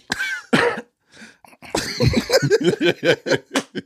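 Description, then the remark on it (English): A person coughs twice, sharply and in quick succession, followed by a short pause and then a run of rapid, breathy bursts that sound like laughter. “Like, damn, I already coughed three times.”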